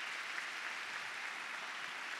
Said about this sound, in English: I can put my hands together and learn how to praise God with a clap, even though in my heart I'm hurting and I'm disappointed. Come on, let's all clap right now. Everybody do it. Everybody do it.